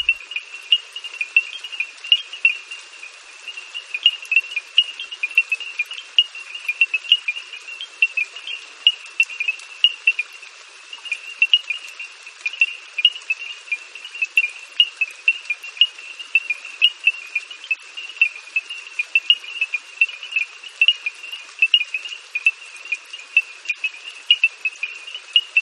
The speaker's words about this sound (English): small frogs create a sound similar to African stone xylophones. Who knew? Bernard Fort found shelter from the storm under a small wooden bridge where he recorded this evening chorus. It's on a CD he calls ….